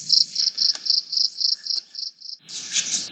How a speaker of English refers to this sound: I'm going to have to stop you there and ask you to move away from those crickets. It's starting to get a bit loud. Oh, yeah. Sorry. It is the time of night.